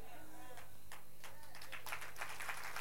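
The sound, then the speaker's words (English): An audience breaks into clapping, a few scattered claps at first that quickly thicken into steady, fairly loud applause, with some crowd voices mixed in. “Yeah, you can clap.”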